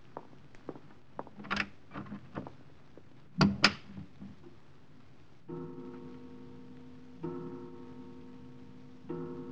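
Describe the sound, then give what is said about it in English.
An unlatched door opens as someone walks in, with a series of clicks and rattles and a sharper knock of the latch partway through, then a low steady tone hums on afterward with no talking. “The door was unlatched.”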